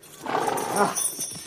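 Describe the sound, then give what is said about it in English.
A horse lets out a brief, throaty whinny lasting about a second, followed by quieter shuffling movement as its rider, Sir Beaumance, gets down from it, with no talking. “Down from your horse, and set your knee against my foot.”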